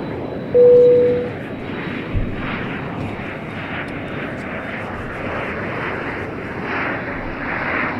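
A steady, loud airplane engine roar fills the whole stretch with dense rumbling noise as a plane takes off on a trip to GABF, with a brief high tone sounding near the start.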